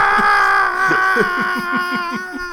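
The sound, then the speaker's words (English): A voice on the Bill and Ted DVD menu imitates screaming with one loud, strained, continuous wail held for a couple of seconds, its pitch wavering and pulsing slightly throughout. “It's not like Bill and Ted where they're just screaming.”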